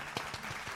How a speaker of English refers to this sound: Well, congratulations. Let's give a round of applause for 1 year. All right. Let's do that.